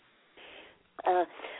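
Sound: coughing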